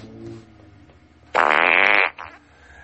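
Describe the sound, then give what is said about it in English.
A single loud, buzzy fart noise blasts for under a second, standing out sharply over quiet background murmur before cutting off abruptly. “So he gets a big ol' fart noise.”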